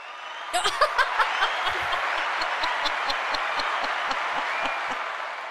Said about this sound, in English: So there you go. You get the round of applause.